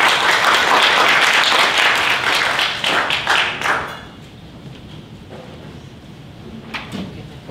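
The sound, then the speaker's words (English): An audience claps to welcome panel guests onto a stage, a dense, loud burst of applause that lasts about four seconds, then fades to a few scattered claps and soft rustling. “So first of all, let's give them a round of applause to welcome them on the stage.”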